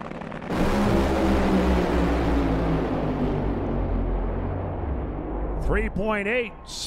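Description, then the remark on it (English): A sudden, deafening roar of 12,000-horsepower Funny Car drag racing engines in the Funny Car semifinals at a racetrack erupts and thunders on, slowly fading, before a voice begins talking over the tail of the noise. “So we play He Said, She Said with 12,000 horsepower Funny Cars.”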